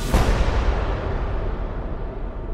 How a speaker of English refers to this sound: He heard the hammer on the gun fall as the gunman attempted to shoot him, but the gun misfired. He curls up into a fetal position, anticipating that shot, and then the second shot goes off.